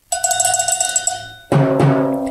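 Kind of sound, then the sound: cowbell being struck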